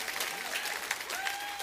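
An audience applauding together as a clap offering to the Lord, a dense, steady wash of many hands clapping at once, with faint rising voices and cheers woven through the clatter.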